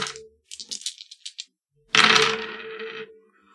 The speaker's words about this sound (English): Or I'm sorry, I need you to roll the dice first.